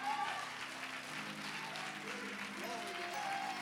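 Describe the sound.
An audience claps steadily, a dense, even wash of many hands, with faint murmuring voices and a low hum running underneath.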